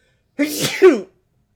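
A single sharp sneeze bursts out, a quick noisy intake followed by a forceful explosive release, lasting well under a second before silence.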